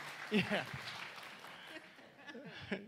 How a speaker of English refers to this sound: Can everybody give a applause for them?